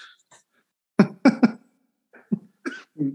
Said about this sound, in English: looks like he's about ready to cough his lungs out of his body.